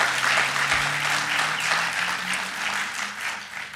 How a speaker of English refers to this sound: Do I have an amen? Clap your hands. Give me a little support in the house.